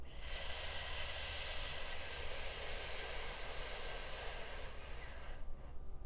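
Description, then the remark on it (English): A slow, steady exhale through the nose during a guided breathing exercise, after breathing in through gritted teeth: a soft airy hiss lasting about five seconds before fading out, with no talking. “And then breathe out through your nose nice and slow.”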